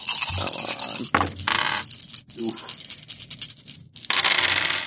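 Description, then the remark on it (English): Eight dice rattle and clatter across a hard surface in several loud, noisy bursts, with a dense spray of sharp clicks and scrapes. A brief lull falls between the bursts. “I'm rolling 8 dice.”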